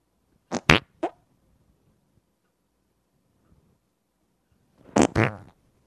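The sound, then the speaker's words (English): Someone imitates a wet fart with their mouth: a quick cluster of three sputtering, spluttery bursts, a long silent pause, then two more loud, juicy blasts close together. “Well, how about I try a wet fart and you can try and think of what a deep cut fart is”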